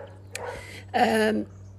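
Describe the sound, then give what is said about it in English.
A dog gives two barks, a shorter one followed by a louder, drawn-out bark, over a faint steady hum in the background; it barks because someone is out the back. “Dog's barking, sorry.”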